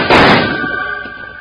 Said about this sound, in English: Just as Wild Bill and Jingles started to help Tommy Brown round up his two calves and head for home, a rider came thundering toward them with his rifle blazing. Jingles was quick to return the fire.